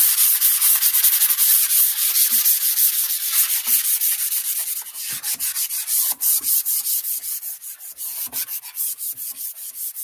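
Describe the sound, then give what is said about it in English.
Continuous hand sanding of primer on a cabinet surface with a medium-grit sanding pad of about 150 to 180 grit, done gently to avoid burning through the primer; a steady scratchy hiss broken by quick rhythmic strokes, with no voices. “So what we're using is a medium grit, probably about a 150 to a 180 sanding pad.”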